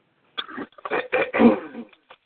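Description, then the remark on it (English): A person clears their throat in a few rough, gravelly bursts lasting about two seconds, moderately loud, with a short final rasp. “Clear your throat. There you go.”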